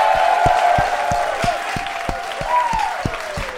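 The Kill Tony audience applauds loudly and steadily for a comedian's debut, with sharp claps falling into a roughly even beat, while shouts and whistle-like cheers rise and fall over the noise throughout.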